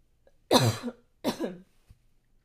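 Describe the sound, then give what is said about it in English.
Two harsh, raspy coughs in quick succession from a person choking on a loose hair they breathed in, each a loud broad burst that trails off, followed by a faint click; no talking. “I was choking on a hair earlier.”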